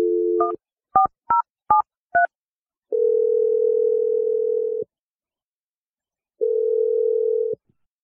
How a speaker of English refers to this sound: Okay, I'm going to dial her phone number right now and let you make the awkward Tuesday phone call. Here we go.